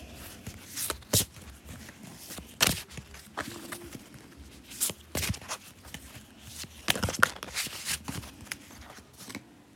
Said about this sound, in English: Goddess cards? Okay, we're going to do goddess cards. I'm going to pick a card for y'all and I'm just shuffling them.